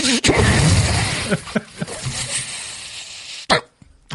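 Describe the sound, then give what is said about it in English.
Loud hissing bursts of mic sanitizer spray hit a microphone: a long spray at first, then a few short puffs with muffled handling bumps between them. “Hey, I got mic spray, actually.”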